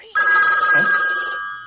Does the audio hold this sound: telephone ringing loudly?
yes